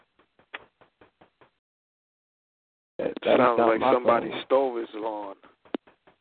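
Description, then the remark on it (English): A quick series of about seven light knocks or taps, evenly spaced and fairly faint, then a pause before a voice starts talking over a few final taps. “Hey, what is that knocking sound?”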